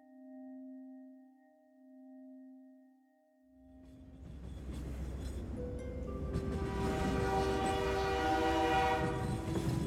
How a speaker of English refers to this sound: The train scuttled across the tracks.